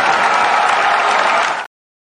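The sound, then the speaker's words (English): A burst of crowd applause, dense and steady with many hands clapping at once, loud and unbroken for under two seconds before cutting off abruptly into silence. “And I'll even give you a round of applause.”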